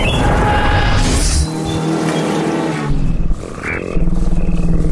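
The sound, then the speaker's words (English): A car engine roars loudly, revving up and down as the vehicle pulls away, with a steady heavy drone filling the whole stretch and no one speaking. “Jump in the car.”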